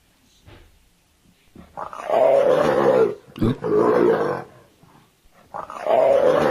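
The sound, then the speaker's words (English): A leopard growls and roars in three loud, rasping bursts, each lasting about a second with short pauses between, played by a voice-assistant animal-sounds app, with no talking. “Leopard.”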